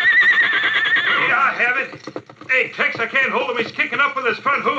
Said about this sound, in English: I can't hold him. He's kicking up with his front hooves. Ho, ho there. Go, Button. Calm that horse or I'll plug him. Ho, Victor. Easy, boy.